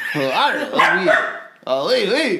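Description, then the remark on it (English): A voice imitates a dog barking with a French accent in two drawn-out, loud bursts, the pitch swooping up and down in a whiny, yelping way with a brief pause between them. “So that was a French bark.”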